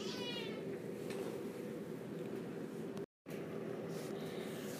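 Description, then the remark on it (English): The speaker's cat, Peanut, meows, a drawn-out vocalization that carries on over a steady background hum, with a brief dropout near the end and no one talking. “My cat is judging me right now, apparently.”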